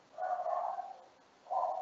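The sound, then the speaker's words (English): A dog lets out two muffled barks, the first drawn out and the second clipped short, with no one talking. “And I think your dog has just joined us just in time for you finishing speaking.”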